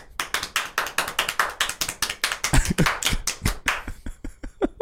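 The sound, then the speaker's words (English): Rapid, steady hand clapping, roughly four or five sharp claps per second, loud and crisp throughout, thinning into a few scattered softer claps at the end. No voices. “You know, let's get a Leo gift clap.”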